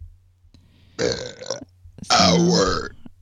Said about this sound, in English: Sorry, I burped an hour. That was beautiful.